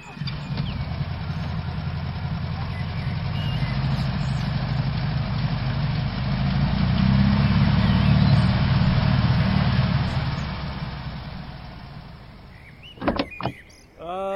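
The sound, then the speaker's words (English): A car engine idles with a steady low rumble that swells louder for a few seconds midway, then settles before a couple of sharp mechanical clunks near the end. “Maybe we should get the car out of there first, don't you think,”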